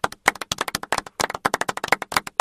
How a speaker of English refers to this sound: Woo! Sound of applause. Woo! I am going to like cut that and put a little applause, like sound effect.